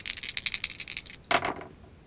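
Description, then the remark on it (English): Two twenty-sided dice clatter and tumble across a hard table surface in a quick series of rattling clicks, ending with a brief louder clack as they settle, rolled with advantage for an attack in a tabletop game; no one talking. “Yes, you have advantage, Scotty, so you get to roll. So roll 2d20.”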